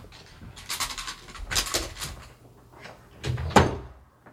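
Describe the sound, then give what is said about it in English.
A door is handled and pushed shut with a few soft bumps and rattles, ending in a firm close; no one speaks. “The dogs are barking. I had to close the door.”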